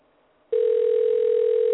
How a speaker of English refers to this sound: All right, this is one phone number ringing. I have reached New York Animal Rights Alliance America, No Kill New York, and Radical Photos,